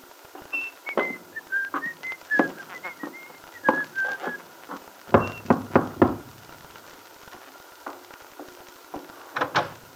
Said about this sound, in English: Whistling cheerfully, Billy went up the shallow steps of Bill's little house in the Wakefield Auto Court.